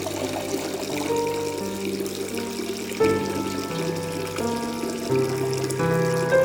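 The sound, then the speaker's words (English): A steady stream of urine splashes into toilet water, spraying in two or three streams, continuous, with a hollow ringing tone that shifts in pitch every second or so. No one speaks. “get to that porcelain throne and release, suddenly the golden shower is spraying in all sorts of directions, two, maybe three streams coming forth from the single hole.”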